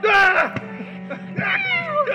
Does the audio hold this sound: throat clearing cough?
no